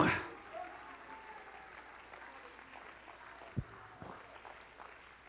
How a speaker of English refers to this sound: Clap your hands to the Lord for a moment. Come on. Come on. Let's give up a Holy Ghost clap. A Holy Ghost clap to the Lord.